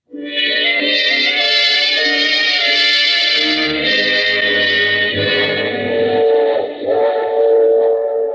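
A train runs along the tracks, loud, a continuous rumbling roar layered with sustained whistle-like tones for the full stretch, with no one speaking.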